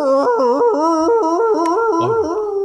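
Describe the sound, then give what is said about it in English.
A dog howls loudly and continuously, its voice wavering up and down in pitch for a few seconds before being abruptly cut off. “I cut him off right in mid-howl.”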